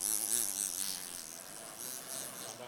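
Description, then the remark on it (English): At Lismer Goldsmiths, a pendant drill whirs steadily as it pounds a ring down, giving a continuous buzzing hum with wavering harmonics and rapid tapping texture, much like a bumblebee. No one speaks. “Pounding a ring down with the pendant drill. Sounds a bit like a bumblebee.”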